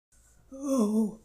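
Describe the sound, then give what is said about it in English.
A human voice imitates an old hunting dog's heavy, labored breath as it tries to catch its breath: a single drawn-out, breathy gasp with a rough voiced tone, moderately loud, with no words spoken. “Hey, Pooch, although I love your sense of rhythm, that's sure some heavy and hard breathing, said the donkey with care and concern in her voice.”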